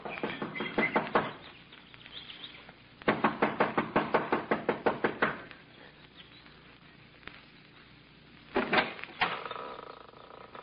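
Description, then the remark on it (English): A young woman knocks rapidly and impatiently on the wooden front door of a small mountain lodge, in several quick bursts with short pauses between, loud, ending with a couple of final raps. “an attractive girl in her early 20s, gets out of the car, runs up the steps of the lodge to the front door. She knocks impatiently, looking about anxiously.”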